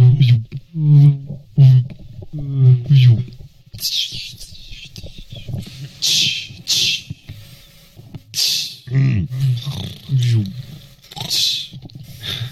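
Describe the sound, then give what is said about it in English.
Several voices trade rough, rumbling growls in a 'growl off', imitating animals using only their voices into a microphone, in bursts with low throaty pitch and harsh breathy noise, some overlapping, loud throughout with short gaps between growls. “Growl off. Everyone starts growling.”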